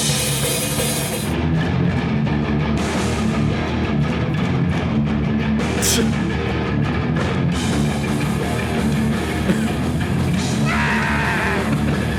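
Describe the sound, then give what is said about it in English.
A loud, dense rock song plays continuously, its distorted full-band wall of sound carrying a singer's raw, sustained scream near the front of the mix. “The last thing I'll say, this is going to be my 30-second clip of the album submission.”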